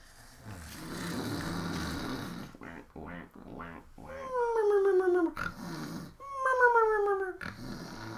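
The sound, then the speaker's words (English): A voice mimics over-the-top snoring: a long rough, rumbling inhale, then two loud whistling exhales that slide downward in pitch, each cycle drawn out and comically exaggerated. “This is an excuse for me to be making preposterous snoring noises.”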